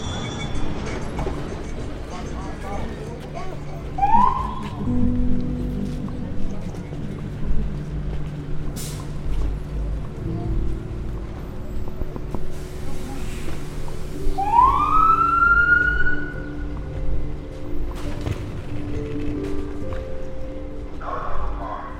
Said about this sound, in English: If you listen to Beethoven or to Mozart, you see that they're always the same. But if you listen to traffic, you see it's always different.